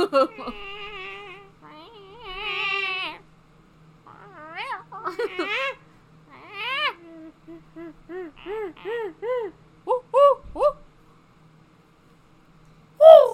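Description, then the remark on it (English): A human voice imitates a bird call, starting with drawn-out warbling tones and moving into a quick run of short, rising chirps. It is fairly loud, with a sharp squeak at the end. “It's a bird.”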